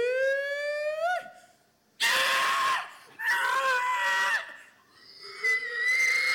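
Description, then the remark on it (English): People at a pig-calling contest let out loud, high, wavering calls and shrieks in several bursts, their pitch sliding up and down with brief pauses between. “There's no pig. It's just pig calling.”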